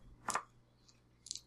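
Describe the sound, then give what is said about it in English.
Dice are picked up and dropped for a roll, clattering lightly onto a hard surface in two short bursts about a second apart, with a faint tick between them. The clicks are quiet, and no one speaks. “Just picking up the dice and dropping them.”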